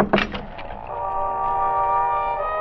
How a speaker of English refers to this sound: The door to the trailer was unlocked, and it swung open at my knock.